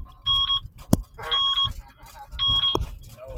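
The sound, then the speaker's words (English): Three loud electronic beeps sound at a steady rhythm, each a short piercing tone, with a couple of sharp clicks and low background rumble between them. “So you start beeping.”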